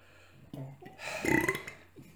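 A single loud, drawn-out burp close to the microphone, rumbling for about a second with a throaty, tonal rasp, then trailing off into quiet room noise.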